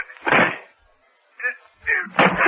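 A locked door being broken down: a heavy crash, then a sharper knock and two more loud, splintering bangs in an irregular rhythm, with no talking.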